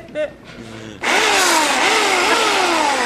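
A chainsaw roars to life after a quiet moment, loud, its engine pitch climbing and dipping through a few quick revs as it keeps running to the end.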